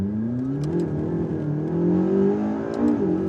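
A loud race car engine roars at full throttle, its pitch climbing and dipping slightly through gear changes in a continuous, unbroken drone with no voices.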